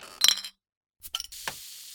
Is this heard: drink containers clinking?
yes